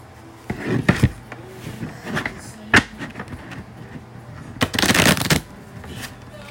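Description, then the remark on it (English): A deck of cards being shuffled two times, with short riffling bursts early on and a longer, louder riffle near the end, separated by softer handling and tapping sounds. “Shuffle it 2 times.”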